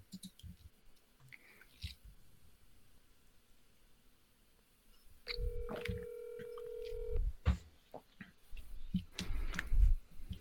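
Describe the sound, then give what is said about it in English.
Telephone dialing tones as someone dials a friend's phone number: a steady electronic beep for about two seconds, surrounded by clicks, taps and handling noises, with no one talking. “I got to find his number.”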